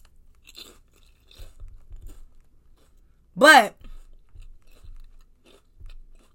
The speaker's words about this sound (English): I feel like this is the ASR, huh? You know, when you eat on a microphone and you let people hear you chewing and weird shit. I don't think I ever want to hear those sounds come from people's mouths.